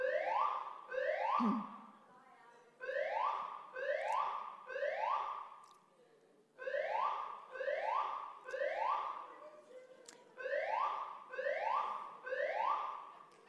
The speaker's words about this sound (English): It's a fire alarm.